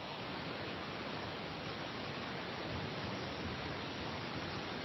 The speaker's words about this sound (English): Are you there at all? I'm getting like a ton of static. Yeah, my thing came unplugged.